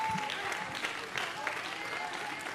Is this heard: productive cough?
no